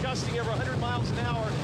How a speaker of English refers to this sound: Look at the wind howling through. through here. I'm waiting for a palm tree to just go plummeting at him.